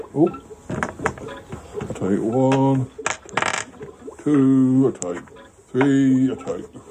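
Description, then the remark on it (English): Four small picture dice are rolled, clattering and tumbling across a hard surface in quick bursts of sharp clicks, mixed with intermittent sustained vocal sounds from someone. “I'll take one, two, three, four, five, six, and I roll the last four dice, and I've got a bus, a chair, a man, and what is that?”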